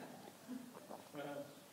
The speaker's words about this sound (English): That's a queer glass, by the way. Is that like a pastor's glass? It weighs a ton. It's like got the best crystal out.